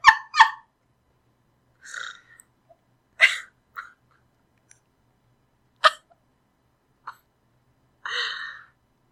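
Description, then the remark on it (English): A person does a Donald Duck impression, imitating the cartoon duck's raspy quacking voice in about eight short, squawky bursts at irregular intervals, with nothing else heard between them. “The best Donald impression I've ever heard in my life.”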